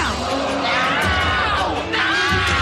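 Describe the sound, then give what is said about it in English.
Loud, continuous screaming from several overlapping voices, high-pitched wails rising and falling with a shouting crowd-like din underneath for the whole stretch. “Now we're going to the screaming.”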